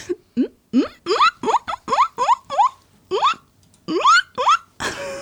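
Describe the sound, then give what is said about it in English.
A person imitates guinea pig squeaks with a quick run of about a dozen rising, whistly chirps in a steady, bouncy rhythm, ending with a short breathy rush of noise. “She wants to do a guinea pig impression.”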